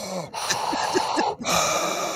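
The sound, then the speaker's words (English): A voice imitates Darth Vader's mechanical respirator breathing, the sound a Star Wars branded TV plays when switched on: a long hissing inhale then a raspy exhale after a brief pause, fairly loud with no words spoken. “Get this, the Darth Vader breathing sound.”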